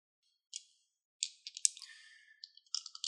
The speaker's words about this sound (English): Oh my word, it's got like 20 dice in his hand. How that sounds.